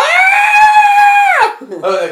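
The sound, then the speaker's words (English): A loud, sustained high-pitched scream holds steady for over a second, then breaks off and slides down into a shorter, lower vocal wail. “What about the screaming, though? What about that, like, that terrible”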